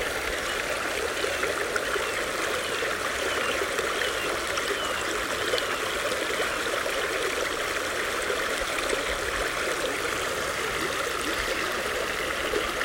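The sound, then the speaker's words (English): Steady water trickling and babbling over rocks in a stream in the woods, a continuous, even rush of bright splashing texture with no pauses and no voices. “We're enjoying the sound of the water trickling over the rocks and the birds in the distance.”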